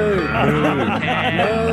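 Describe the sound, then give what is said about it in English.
A drawn-out, wavering cow moo rings out within a bouncy children's song, fairly loud over the backing music, with a singing voice woven around it. “That was on high rotation in my car, and I'd always get my moo out before the proper moo, much to my kids' disgust.”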